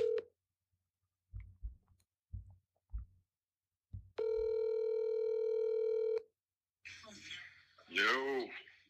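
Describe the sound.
A phone call being placed from a phone's contact list: a brief tone, a few soft taps, then one steady two-second ring tone, clear, before a voice comes on the line.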